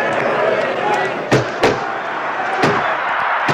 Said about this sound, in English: Fucking block these punches, you dumb fuck. He's just getting his face. No, he lets him punch him.